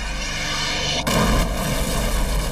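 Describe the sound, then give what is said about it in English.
A huge bomb explosion at the FBI's office on Devil's Night, the evening before Halloween, at 7:45 p.m., bursts in about a second into a steady roar, loud, leaving a dense rumbling wash of noise that lingers to the end, with no voices. “A huge explosion rocks the FBI's office.”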